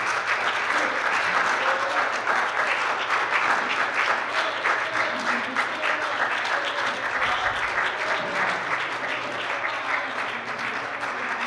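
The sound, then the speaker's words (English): An audience claps steadily for about eleven seconds for all the teams at the end of a debate at Washburn. A dense, even wash of applause that stays loud throughout and tapers only slightly near the end. “We show a round of applause to all the teams.”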